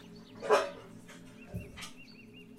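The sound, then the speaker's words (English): A female dog, Miss Chacha, lets out one short, stifled woof, then a low grumbling huff, as she starts to bark and is stopped by her owner. Both sounds are fairly quiet, with faint chirps in the background. “Yeah, she was gonna bark. I stopped her.”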